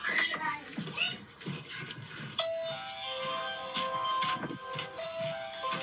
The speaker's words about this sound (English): Is that your doorbell?